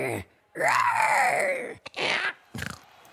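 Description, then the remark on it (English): A person voices a loud, raspy roar imitating a Velociraptor, with a rising then falling pitch, followed by a short click and two more harsh, growling bursts. “Now it's time for the Velociraptor. Are you ready? Ready. Give us your best roar.”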